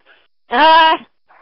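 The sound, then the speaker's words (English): A dog lets out a single drawn-out whimper, a loud, tonal whine lasting about half a second, with faint murmurs just before and after. “You hear my dog.”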